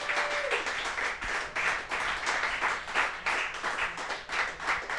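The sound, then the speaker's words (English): A crowd applauds steadily for the full stretch as a show's co-host is welcomed, a dense wash of many hands clapping at once with a slight ebb and swell, loud, with no voices. “You are milking those applause, and I love it.”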